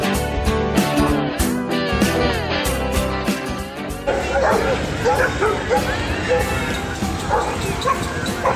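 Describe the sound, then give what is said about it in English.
Several dogs bark and yip in quick, overlapping bursts, with some higher whimpering cries, over a steady background of crowd chatter and bustle at Doggy Paddle, a Lexington Humane Society dog event at Woodland Pool in Lexington, Kentucky. “Hey everybody, as you can tell from the background sounds, I'm at another great dog event.”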